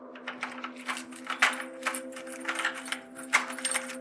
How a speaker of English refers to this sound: When she heard the keys jangling, Mary sat bolt upright on the bed